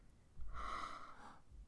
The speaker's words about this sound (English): Yeah, we did both gasp there.